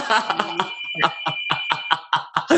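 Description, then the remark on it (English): A landline home phone ringing in a house: a rapid, pulsing electronic warble riding on a steady high-pitched tone, repeating in quick bursts throughout, fairly loud with no one talking. “Oh, my home phone's ringing.”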